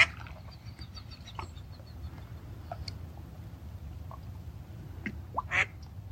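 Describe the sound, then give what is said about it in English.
Ducks quack in short, scattered bursts over a steady low outdoor rumble, with a louder, closer cluster of calls near the end. No one speaks. “And the ducks are such important teachers of language, heart language.”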